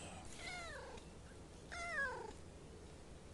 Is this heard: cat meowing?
yes